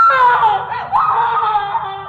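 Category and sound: human body sound, woman screaming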